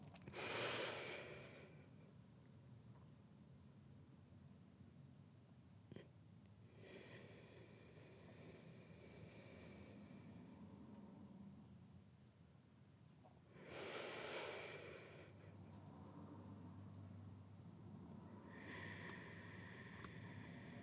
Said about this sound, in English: So now I'm going to teach you a 3-pattern breathing technique. You breathe in for 6, hold your breath for 4, then breathe out. Let's try a few of those.